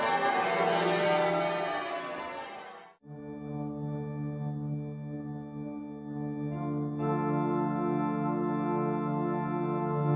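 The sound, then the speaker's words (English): A dense, noisy wash of sound cuts off after about three seconds, giving way to loud, sustained ringing tones of the church bells of Lincoln Cathedral that hum and swell steadily to the end. “The glorious sound of the bells of Lincoln Cathedral”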